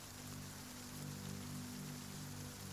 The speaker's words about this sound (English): Hurriedly down they went, rolling over each other pell-mell, till with a patter and clatter and spatter they touched the ground. And all the people cried, "It's raining!"